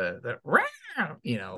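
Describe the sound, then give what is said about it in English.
A voice imitates a cat meowing, with a few short mews followed by one long, rising-and-falling meow, clear, with no other sounds around it. “like the cat noises and the spooky ghost noises.”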